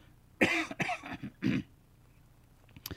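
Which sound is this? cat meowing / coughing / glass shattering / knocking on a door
coughing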